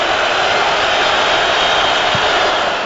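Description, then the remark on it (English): A basketball arena crowd roars loudly and steadily for about three seconds, a dense wash of cheering and murmur with no distinct voices standing out, reacting to a free throw by Lopez in a game against the Raptors. “Listen to the crowd. They'll tell you if it goes in or not.”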